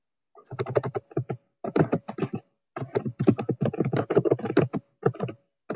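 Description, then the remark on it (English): Rapid computer keyboard typing clatters in dense bursts of clicks, with brief pauses between flurries, moderately loud with no one speaking, heard from someone who has not muted themselves. “Somebody may want to mute themselves. I think we can hear typing.”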